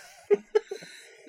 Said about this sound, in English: I need to cough now.